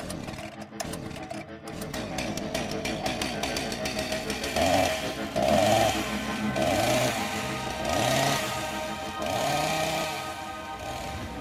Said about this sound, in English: that time that we rev up the old chainsaw and... Whatever happens during that happens.